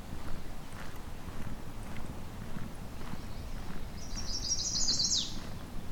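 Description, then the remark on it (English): A mourning warbler sings one short, rolling burst of clear, slurred phrases near the end over a steady low outdoor rumble and soft crunching footsteps of someone walking alongside a road at the Currie Tract, Halton region. “Here we go, mourning warbler.”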